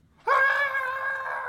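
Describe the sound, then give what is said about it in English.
A single sustained, high-pitched scream from one voice, loud, starting abruptly and holding steady for over a second; a person imitating the startled shriek of someone who didn't know another person was there. “Just go screaming. Didn't know I was here.”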